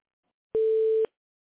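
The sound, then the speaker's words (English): A single electronic beep on a phone line, a steady mid-pitched tone lasting about half a second, loud and clean with silence on either side and no voices. “So, I don't know why it's beeping.”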